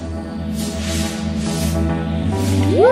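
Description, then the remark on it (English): Synthesized white noise swells and fades in repeated whooshing waves over a steady low electronic drone, with a tone sweeping upward in pitch at the end. No one speaks. “A more complex sound still is white noise.”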